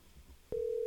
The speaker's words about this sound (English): This little bitch isn't going to answer, is he? He's like, it's probably spam. Either that or he's going to answer the phone not realizing that you're calling him from the show.